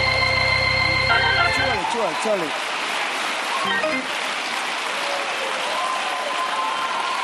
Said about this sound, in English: I need about 300 people to clap your hands like you really, really believe that everything is about to happen.